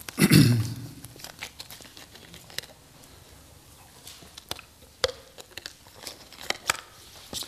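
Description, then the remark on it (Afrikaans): A preacher pauses during a sermon to take a drink of water: a dull thump at the start, then scattered sharp clicks, plastic crinkles and small mouth sounds, with no talking. “En ek gaan net eerst een stuk water vat, anders gaan ek hier klaar kreeg.”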